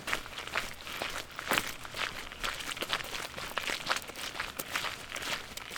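Footsteps walk along a trail in heavy rain at a steady pace, each step a crunchy, scuffing crackle repeating roughly every half second over a soft, constant background hiss. No one speaks.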